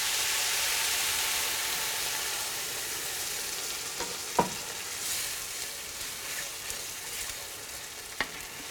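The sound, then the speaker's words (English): Broth is poured into a hot jambalaya pot of browned sausage and rice seasoned with Old Bay, raising a loud, steady sizzling hiss that runs throughout, broken by a few sharp pops and clicks. No one speaks. “And now the broth will come in.”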